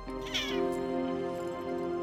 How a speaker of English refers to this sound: Hey. Cute cat.